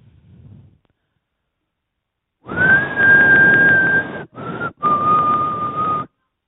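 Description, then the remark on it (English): A person whistles a tune in long held notes, breaking briefly between phrases and stepping slightly down in pitch, against a steady hiss of room or crowd noise. “She just starts whistling.”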